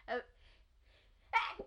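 A single loud sneeze: a short voiced intake first, a pause, then a sharp explosive burst that trails off quickly. No one speaks.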